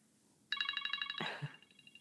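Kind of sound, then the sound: signal or alarm, timer alarm going off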